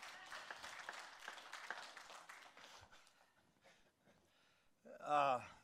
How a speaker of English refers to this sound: You can applaud because I know some of you guys are a mess.